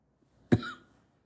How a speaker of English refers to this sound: Excuse me, I don't have the cough button here yet to blank out my coughs.